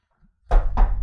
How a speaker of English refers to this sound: you know, knock on wood.